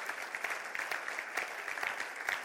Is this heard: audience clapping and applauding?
yes